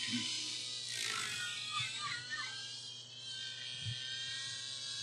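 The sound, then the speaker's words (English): A nitro RC helicopter engine whines with a high, raspy buzz, its pitch sweeping up and down as it spools for takeoff, sustained throughout over a low steady hum. “I don't know if you hear this, but there's a nitro taking off.”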